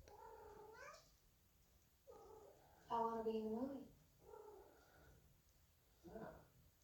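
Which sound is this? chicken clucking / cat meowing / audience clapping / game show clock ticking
cat meowing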